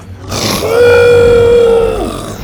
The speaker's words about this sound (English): As if breaking free of invisible shackles, Buck raised his big red head to the sky and let out a roar that sent chills up Bo's back.